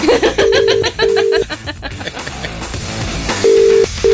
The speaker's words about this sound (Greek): Αλέκο, θα το σηκώσει ο Άρης, δεν θα το σηκώσει ο Άρης. Έπα τον πάρω το κινητό μου.